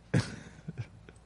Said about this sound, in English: says we're good and then coughs his lungs out again.